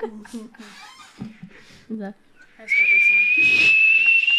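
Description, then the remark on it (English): After a stretch of talking, a loud, steady high-pitched whistle like a tea kettle comes in and holds, rising slightly, probably a person imitating it with their voice. “The tea starts whistling.”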